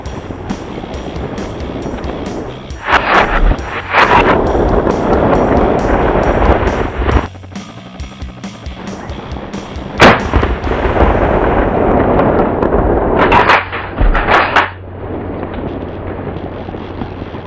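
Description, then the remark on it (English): Steady, dense rain drums on a tent roof by a road near a large power line, a loud continuous patter with several sharper bursts of heavier pounding scattered through it. No one speaks. “All right, as you can hear, we're sitting here in the rain.”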